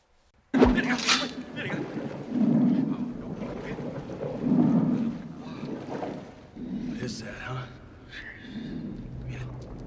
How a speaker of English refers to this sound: Sounds like something breathing underwater.